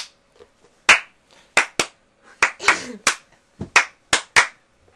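About ten sharp, loud hand claps in an uneven, halting rhythm, some in quick pairs and others spaced apart, with a short burst of a softer, rougher sound near the middle.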